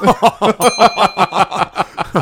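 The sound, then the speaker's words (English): A single bright 'perv bell' ding sound effect rings out and fades over about a second, partly buried beneath steady, rhythmic bursts of loud laughter that continue throughout. “I almost think that requires a perv bell.”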